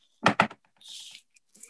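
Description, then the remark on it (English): Two loud, sharp knocks on a door in quick succession, followed by a brief metallic rattle and hiss like a handle or keys jangling. “Just then, a knock at the door.”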